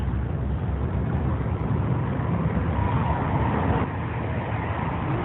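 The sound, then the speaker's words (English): A car engine rumbles with steady, unbroken road noise as a car pulls up outside a courthouse; no one speaks. “I'm going to make her get it in the car that just pulled up, huh?”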